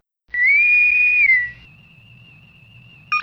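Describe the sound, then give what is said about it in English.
A Star Trek-style Starfleet communicator whistle for opening hailing frequencies: a bright, steady high tone rising and holding for about a second, then a thin lingering tone over a low hum, ending with a sudden chirp. “why don't you go ahead up and open those hailing frequencies and advise our listeners how they can actually get in contact with us.”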